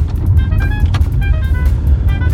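Steady low rumble of a car interior while driving to a grocery store on a 19-degree day in October, with constant road and engine noise filling the low end and faint higher tonal squeaks and clicks over it; no one speaks.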